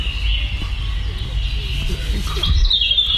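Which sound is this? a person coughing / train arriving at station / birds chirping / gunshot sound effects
birds chirping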